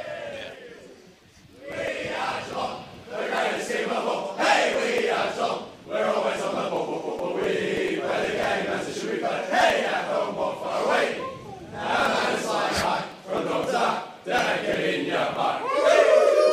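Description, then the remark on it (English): A group of men in the Cats' rooms after a football finals match loudly singing the team victory song together, voices merging into a rowdy, continuous chant with rhythmic swells and brief pauses between lines, echoing around the ground. “I thought you were singing that song that was echoing around the ground a few moments ago”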